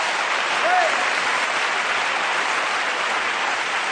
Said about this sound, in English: I commend you today. Everybody in here ought to give them a hand clap. Keeping yourself pure, keeping yourself holy, keeping yourself unspotted from the world.